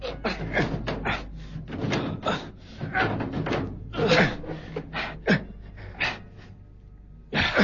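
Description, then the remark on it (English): A heavy safety deposit drawer in a vault is tugged open by two people in a series of scraping, thudding jolts, with strained breathing and gasps between the pulls. “Now give me a hand with the safety deposit drawer. Right. Right. Pull.”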